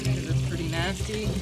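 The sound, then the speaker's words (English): Liquid fuel, a mix of gas and diesel, glugs steadily into a red metal drip torch can as crews prepare to set fires, its gurgling tone rising as the container fills, over a low background rumble and faint murmuring voices. “Filling them up with gas and diesel.”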